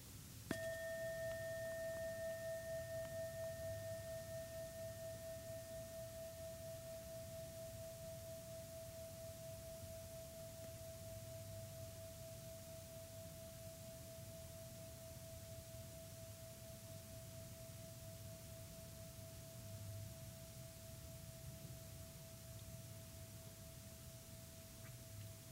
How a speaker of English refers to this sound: So when we hear the next bell, it will signal our meditation has ended.